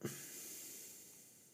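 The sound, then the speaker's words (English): A single soft, airy exhale through the nose, recorded very close to the microphone in GarageBand, with a breathy hiss that starts with a small puff and slowly fades. No one speaks. “And you can hear my nostrils and my breathing and my lip smacking.”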